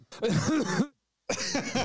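Someone close to the mic clears their throat and coughs in two rough, voiced bursts, the first longer, separated by a brief silence.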